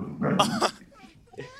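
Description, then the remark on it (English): A person imitates a low growl at a dog in one short, rough, throaty burst lasting about half a second, followed by a few faint vocal sounds. “… walks up to that scene and kind of does a little growl at the dog.”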